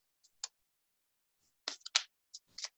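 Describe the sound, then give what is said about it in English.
A deck of cards being shuffled by hand: a few soft, papery slaps and flicks in irregular bursts, fairly quiet, with no talking. “And I'm just going to give a little shuffle here.”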